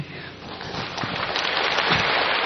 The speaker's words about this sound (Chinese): 够了。他们拍手的时间是很多。谢谢各位爱心啊，欢迎的气氛。